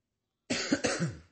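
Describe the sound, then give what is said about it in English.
A sick person coughs in a short burst, two or three quick rough hacks in a row, fairly loud, with no talking around it. “We still heard you cough.”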